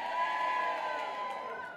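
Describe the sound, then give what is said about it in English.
An audience shouts "yay" together to vote for a song choice at a live show, one sustained, loud cheer of many voices, a dense blended yell that holds steady for under two seconds before slightly fading. “Okay, all in favor of a demon guitar say yay. Yay.”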